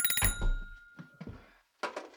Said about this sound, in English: that's weird. Oh, Dr. John's phone.